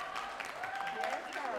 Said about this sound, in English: So in the pandemic, I made a few million. And it's funny because I didn't realize, you wanna clap for that, but I didn't realize I made it.